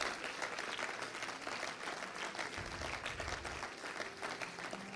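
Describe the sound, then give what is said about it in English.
An audience claps steadily in a standing ovation, a hand clap of praise, in sustained, dense applause, a loud unbroken wash of many hands, with faint low murmuring underneath. “Come on, one more hand clap of praise. Make it a standing ovation to it.”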